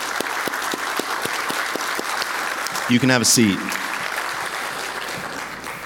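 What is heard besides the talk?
audience applause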